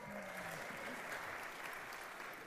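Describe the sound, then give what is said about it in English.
A church audience gives a pastor soft, polite golf-clap applause, a steady patter of many hands with faint murmuring voices underneath. “That's a nice little golf clap for Pastor Josh.”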